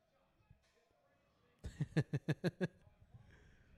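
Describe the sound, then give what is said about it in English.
Six or so heavy foot stomps by wrestlers landing punches bang on a metal grate in a quick, even rhythm, each hit loud and clanging with a metallic ring, against faint background noise. “so usually when you land a punch in the ring, you stomp your foot as well, and it's just funny them doing it on the grate.”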